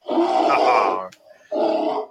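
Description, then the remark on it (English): A person imitates a bear growl, done in place of a frying-pan sound: a long, rough, rumbling roar lasting about a second, a short pause, then a second shorter growl, both loud and gravelly with no talking. “Can't find the frying pan one anymore, so I did a bear instead.”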